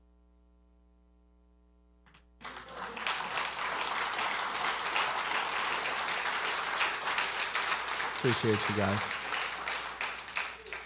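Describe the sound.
A crowd breaks into sustained applause after a brief quiet start, the dense clapping staying loud and steady to the end, with a short spoken remark heard over it.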